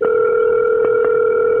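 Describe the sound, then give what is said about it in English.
A phone line tone on an outgoing call, a steady, loud, unbroken electronic hum of two blended pitches lasting under two seconds, with a couple of faint clicks and no talking. “Let's see if he answers.”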